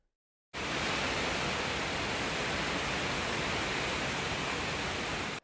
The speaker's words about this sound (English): a little video clip that Matthew sent me on Wednesday night when the storm came over their part of Florida